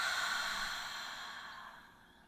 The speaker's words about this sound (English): So let's get ourselves comfortable. Get yourself relaxed. Let's take a nice deep breath in. Really slow, breathing in all that beautiful oxygen and release it.